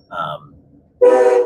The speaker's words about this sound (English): Oh, my train's going by.